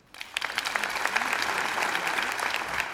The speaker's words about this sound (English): Here's the example. Catholic University law librarian calls police on student for being argumentative. Clap your hands if you think this is real.